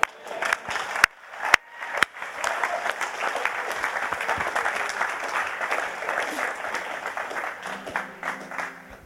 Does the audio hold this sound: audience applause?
yes